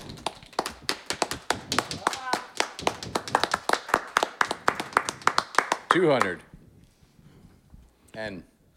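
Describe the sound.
Several people clap in quick, uneven bursts for about six seconds, crisp sharp claps piling up, then a brief shout rises as the clapping stops, followed by another short voiced exclamation.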